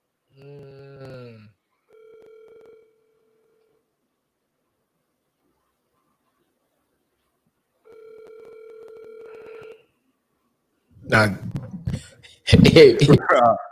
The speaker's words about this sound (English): This is another number I got for Dev's dad. Yeah, come on, Tun. I beg him pick up this one.